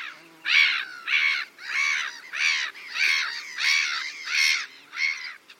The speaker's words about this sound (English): Here are some black-headed gulls in Siberia.